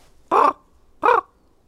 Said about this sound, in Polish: Miałeś trzy rodzaje głosów kruka. Które to były? A był taki nawoływanie.